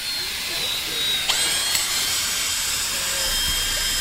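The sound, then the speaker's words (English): A power drill whirs steadily outdoors as students bore holes into the lawn at Cedar Grove High School in New Jersey for a 9/11 memorial field of flags, a continuous high, grinding whine broken by a couple of brief knocks, while faint voices murmur in the background. “Some students are drilling holes in the lawn here at Cedar Grove High School, and others are inserting flags.”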